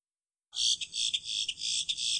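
A boat-tailed grackle gives a harsh, buzzy, insect-like call that starts abruptly and runs for under two seconds, loud, with a rasping, pulsing texture and no other sounds.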